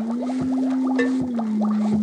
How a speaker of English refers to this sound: Notice what happens when I tap on the glass jar.